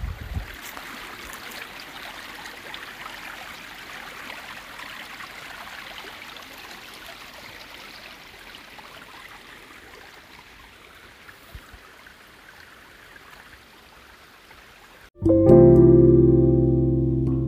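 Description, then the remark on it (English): Gentle, steady flowing water trickles at a calm, even level at a rice terrace for about fifteen seconds, then a sudden loud burst of tonal sound abruptly cuts in near the end. “Can't really do any other content besides audio content on a podcast, but yeah, now the rushing waters up there, we got these calm waters.”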